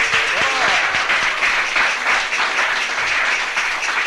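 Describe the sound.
A crowd applauds a speaker for his talk that evening, a steady dense wash of many hands clapping at an even loudness throughout, with a brief faint voice rising at the start.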